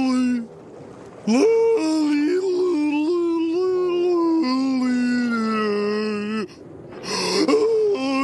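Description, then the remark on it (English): A person imitates a wolf howl: one long, wavering, sustained vocal tone lasting about five seconds, rising briefly and then sliding down. It is loud, followed by a short vocal burst. “Howling like a wolf”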